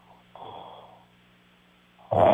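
Loud snoring: a rough, rattling snort that fades out, a brief quiet pause, then a second, louder raspy snore that cuts in abruptly. No one speaks.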